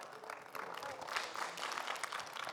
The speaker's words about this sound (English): Praise God. Give the Lord a big hand clap for that.